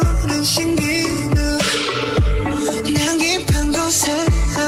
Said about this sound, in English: Can you hear it? Yeah. Listen to this. This song's so good, dude.